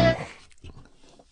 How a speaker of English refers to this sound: Maybe it's time you get that cough checked out.